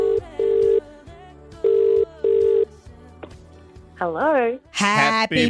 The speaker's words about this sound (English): Let's dial in the phone and give her a call on her birthday.